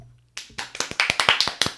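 A brief burst of applause from a few people, quick overlapping claps starting abruptly and continuing in an uneven, rapid rhythm at moderate loudness, with no voices.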